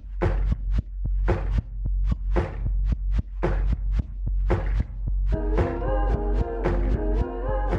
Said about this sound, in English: And it starts with this beat that sounds like it's made from vinyl warps and sounds of like banging on tables.